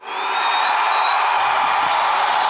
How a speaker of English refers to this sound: Here they come. Here they come. I'm going to get my thunderous applause button ready.